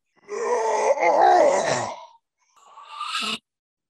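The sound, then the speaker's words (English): A Gandalf zombie's strained breathing: a long, rasping, groaning inhale-exhale, then a brief pause and a shorter, hoarse, breathy gasp that cuts off abruptly. No one speaks. “The breath you hear.”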